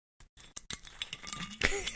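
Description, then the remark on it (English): The screw cap of a 750 ml bottle of Mashable whiskey (80% corn, 20% English malted barley) twisting open: a quick run of small dry clicks and ticks as the seal breaks, growing louder toward the end, where a voice briefly starts. “And it is a screw cap.”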